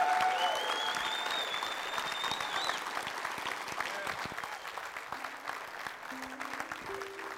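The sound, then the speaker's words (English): A crowd applauds steadily for several seconds in praise to God after a prayer, dense clapping with scattered cheers and whoops rising above it, a few sustained tones appearing toward the end as the applause continues. “Come on, let's give God a big praise.”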